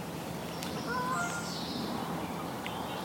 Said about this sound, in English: So there's an interesting contrast between the sound of the tractor and then this wealth of mostly bird noise, isn't it? I can hear a few insects.